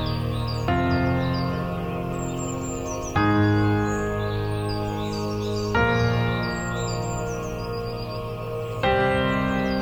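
Small bird chirps flicker high above a warm, sustained backdrop of a male chorus, piano and harp whose chords shift every few seconds, the birdsong woven into the song.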